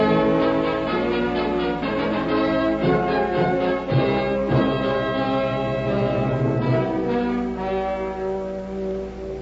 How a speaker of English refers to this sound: Try the doorbell again